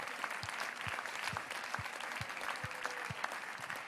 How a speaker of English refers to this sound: Can we give the Lord a hand clap of praise right now?